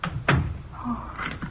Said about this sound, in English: Come in and put down that suitcase. We'd better shut the door.